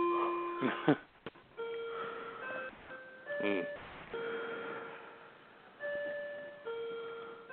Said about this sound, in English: No, that's my clock letting us know it's 9 o'clock.